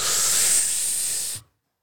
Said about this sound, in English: Here, let's test this right now. I'm going to breathe in heavily.